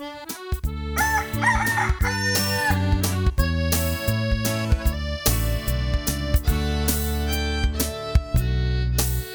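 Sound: rooster crowing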